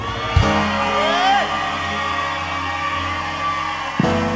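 A large crowd erupts in a sustained collective shout on the count of three, loud and dense, with whoops and cheers rising over it for a few seconds before cutting off sharply.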